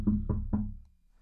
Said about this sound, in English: So you hear like, you're laying in bed. You hear a knock on your door.